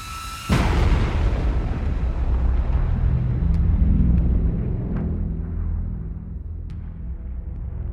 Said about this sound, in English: Off to the east, out beyond the bay, the night lights up in a series of explosions. Smith's Point holds its collective breath for a moment before all hell breaks loose in the skies above.